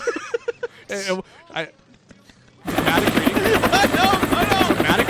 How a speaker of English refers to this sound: No, stop, helicopter.